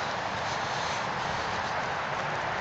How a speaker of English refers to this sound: You can probably hear the traffic. I can see it from here. There's two fences between us and the traffic, don't worry. We are in the woods on a path that runs along the outside of the woods. And there's a big main road next to us.